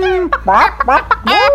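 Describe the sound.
A person imitates a chicken, making a quick run of loud clucks and squawks with rising and falling pitch, about five bursts in under two seconds.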